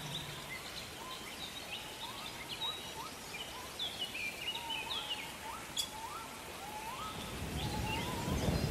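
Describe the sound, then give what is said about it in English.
Steady rain hisses over a meadow throughout, growing a little heavier near the end, while birds chirp and trill in short repeated calls over the top of it. “The sound of the rain is like a lullaby, soothing you and inviting you to relax.”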